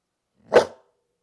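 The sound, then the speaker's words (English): A single short, fairly loud dog bark given on command to speak, standing alone with silence before and after it. “Opie has one. Oh, you want to tater tot, buddy? Speak. Speak.”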